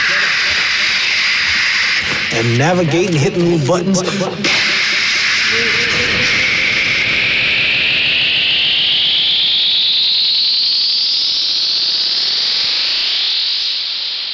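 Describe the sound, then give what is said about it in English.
A large jet roars loudly through its takeoff, a steady hissing blast with a whining engine tone that climbs and sweeps upward for many seconds; a man talks briefly early on. “here he is taking the big jet off.”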